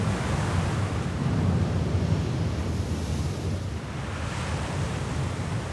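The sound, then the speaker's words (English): Steady ocean wash surrounds a sailing ship crossing the calm Mediterranean Sea westward toward Gibraltar, a continuous low rumble of water and surf with a breathy wind-like hiss, even throughout with no voices. “Twenty days passed as our ship, the We're Here, crisscrossed the calm waters of the Mediterranean Sea, heading west to Gibraltar.”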